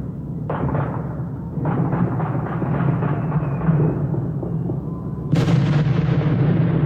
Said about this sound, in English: Yeah, that's an M80. Very well could be. I mean, okay. It's no regular firecracker. Yeah, no, that's a juiced up. That's a whole load of firecrackers that somebody stuffed in a mailbox, like you said.